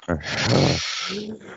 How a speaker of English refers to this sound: All right, ready? Let's take a few deep breaths.